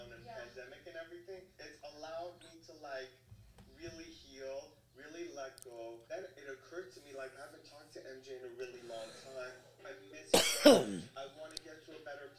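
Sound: coughing and throat clearing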